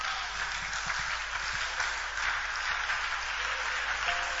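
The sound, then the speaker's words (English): A church audience claps steadily for a testimony throughout, a dense, even wash of many hands with no pauses and no one talking over it. “As you are clapping for the testimony, may it be your testimony.”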